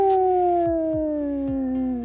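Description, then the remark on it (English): A wolf gives one long, loud howl, its steady tone sliding slowly downward in pitch. A few soft, low thumps sound beneath it, and no one speaks. “The Wolf. Ow, ow, ow!”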